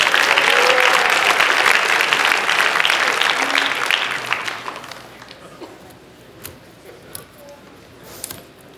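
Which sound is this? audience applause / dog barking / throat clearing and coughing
audience applause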